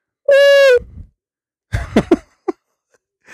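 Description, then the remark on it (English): A single loud, steady cooing call from a carrier pigeon rings out briefly, followed by a few rough, throaty grunts and a short sharp click in otherwise quiet surroundings. “Here, I'm going to send a messenger to you, a carrier pigeon.”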